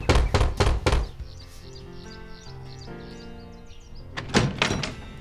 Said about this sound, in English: He stopped at Tante Odette's house and knocked.